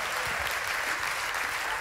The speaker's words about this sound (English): If you receive that, go ahead, give the Lord a great big hand clap one more time.